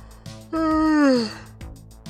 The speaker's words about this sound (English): Anyways, here comes the yawn.